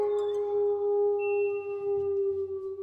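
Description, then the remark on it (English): A person imitates a wolf howl: one long, steady, mid-pitched wail held for nearly three seconds with little change in pitch, fairly loud, with no other voices or sounds around it. “And until next time, let me get a howl.”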